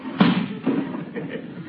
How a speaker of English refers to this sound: Noisy neighbor. Slamming windows at this hour of the night. No consideration for other people.